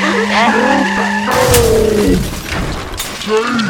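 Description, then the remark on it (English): A car races in too fast with loud, high-pitched tire squeals, then a harsh, noisy burst like an impact as it runs into the Brimstone Suite, with more screeching trailing off. “it looks like they're pulling up now. They're going way too fast.”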